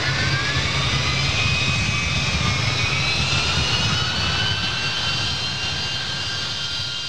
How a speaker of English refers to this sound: Well, with the sound of a classic Boeing 747-200 in the background, welcome to our second season of Squawk 7000, Ireland's aviation podcast.